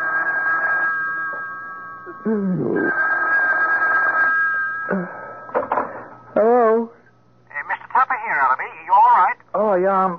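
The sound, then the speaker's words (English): A telephone rings twice in long, steady electronic bursts, fairly loud, then voices begin talking in quick exchanges as the ringing stops. “A couple of hours later, the phone rang.”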